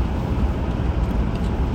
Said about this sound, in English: I'm just cruising along. I'm not in a hurry. Going to the dump the stuff out of my bed, of my truck, so I can get rid of it.